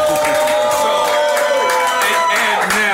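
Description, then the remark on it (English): A crowd cheers and whoops loudly and steadily, with clapping woven into a dense, unbroken roar of voices that holds for about three seconds. “Let's make some noise while I'm keeping it real, though, goddammit.”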